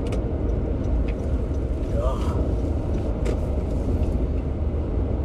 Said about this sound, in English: Trucks.